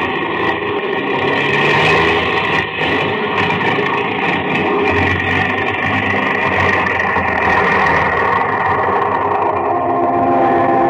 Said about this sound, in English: The engines are stopping. We're going to fall.